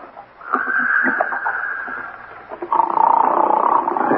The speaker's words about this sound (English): Some guy snoring up a storm at 9.